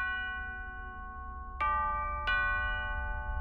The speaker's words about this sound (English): Just then, the doorbell rang.